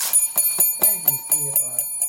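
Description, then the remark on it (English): A small novelty bell inscribed 'Ring for blowjob' is struck rapidly about nine times in a quick, even rhythm, its bright metallic ring sustaining throughout, with a voice briefly audible underneath, fairly loud. “Wait, show the camera what your bell says.”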